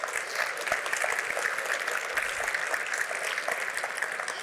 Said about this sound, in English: So, last round of applause at this moment, please. Look at your neighbors and thank everybody here, because we couldn't do this without all of you.